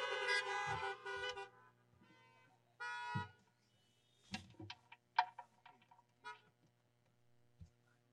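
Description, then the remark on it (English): Car horns honk outdoors as churchgoers in their cars respond to the peace being offered during a church service: a long blaring toot, a second shorter honk a moment later, then scattered clicks and faint brief toots against a steady low hum. “And you can respond with a honk of your horn as the peace of Christ coming back to me.”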